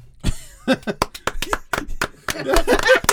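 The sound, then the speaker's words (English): A quick run of sharp hand claps, a dozen or so in uneven rhythm, with voices and laughter rising under the clapping toward the end. “Now that I think about it, the level of petty that she went to should be applauded.”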